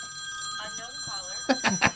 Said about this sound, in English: It's an unknown caller, it's by the way. Unknown caller. Your phone doesn't have the spam watch yet?